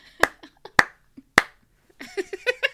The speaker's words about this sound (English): I was clapping for you.